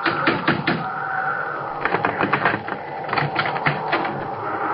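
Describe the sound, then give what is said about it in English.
Loud, urgent knocking on the door of a house during a snowstorm, coming in rapid bursts of sharp raps that continue throughout, over a steady rushing background noise. “I ran toward the house and stumbled up the path to the door. Let me in! Let me in!”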